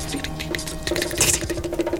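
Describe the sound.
Voices imitate a monster's clicking noise, done like a round. A rapid, dense rattle of mouth clicks repeats in quick rhythm, the voices overlapping one another with a faint hum underneath, steady and moderately loud throughout.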